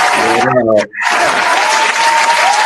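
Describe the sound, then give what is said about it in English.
A crowd bursts into loud, sustained, dense applause welcoming a guest, with a shouted cheer at the start and a momentary break before the clapping surges on steadily. “Ladies and gentlemen, I want y'all to give a good, nice round of applause for your boy,”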